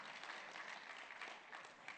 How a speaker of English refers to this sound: Let me say that again, because you didn't hear me. You were clapping.